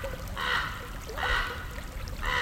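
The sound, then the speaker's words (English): Casper Creek water trickles and gurgles at a soft, steady level, recorded in December 2021, with three brighter splashing surges arriving roughly every second over a low, constant rush. No voices. “Written and recorded December 2021, next to Casper Creek.”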